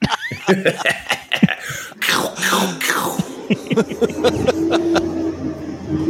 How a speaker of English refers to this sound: Recology, the priorities. The fucking truck is loud.